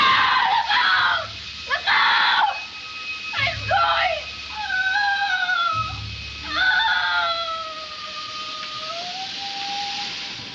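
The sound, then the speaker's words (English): A high, shrill, loud scream from the Wicked Witch of the West in a film clip from The Wizard of Oz rises and wavers in several long, drawn-out bursts, with warbling sustained tones trailing off near the end and no speech. “Is it the Wizard of Oz? And the character? Wicked Witches of the West.”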